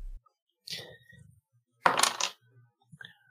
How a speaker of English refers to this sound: Roll that dice.